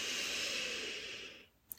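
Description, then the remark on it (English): A long, steady, airy inhale, soft, drawn through the nose for over a second as a deep breath in a mindfulness breathing exercise, before trailing off into quiet, followed by a tiny click. “Let's end this mindfulness centering moment by taking a few deep breaths, practicing our beach ball breathing, and feeling the love and gratitude inside us.”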